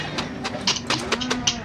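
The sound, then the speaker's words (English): Cattle low in a steady, drawn-out moo amid a restless herd as men load the cattle, with scuffling, shuffling bursts of hooves and movement breaking through. “Stop those men from loading the cattle.”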